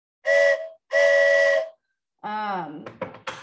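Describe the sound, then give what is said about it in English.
Two long, breathy, loud blasts from a handheld souvenir ballpark train whistle from the inaugural 2000 season of Enron Field, with a short gap between them, followed by a person starting to speak. “My head movement was perfect to your whistle then, by the way.”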